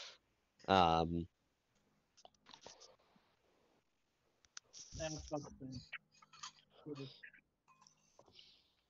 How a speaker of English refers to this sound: Sorry, I'm thinking while typing.